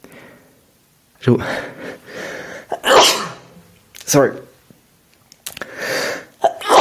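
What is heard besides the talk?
sneezing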